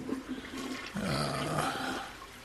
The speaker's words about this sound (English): I'm going to flush this thing again.